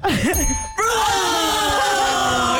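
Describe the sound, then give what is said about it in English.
A bright bell rings twice in quick succession, the second strike ringing out and slowly decaying, loud, with faint voices murmuring underneath. “Oh, is there more bell ringing?”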